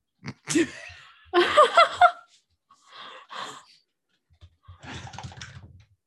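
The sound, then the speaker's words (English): A person imitates a dog with a string of fairly loud vocal noises: a sharp yip, a longer yelping burst, then quieter whimpers and a rough growly stretch, separated by short pauses. “I'm going to turn into a dog.”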